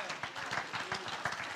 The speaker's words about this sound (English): Thank you, Jesus. That's right. You can just clap your hands to the Lord.